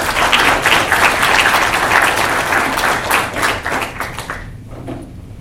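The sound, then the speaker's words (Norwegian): An audience applauds two panelists, the heads of Norfund and Utviklingsfondet, as they come up, a dense wash of many hands clapping at a fairly loud, even level before thinning out and fading in the last second. “Vær så god, gi dem en liten applaus på vei opp her.”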